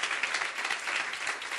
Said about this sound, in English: please put your hands together for them.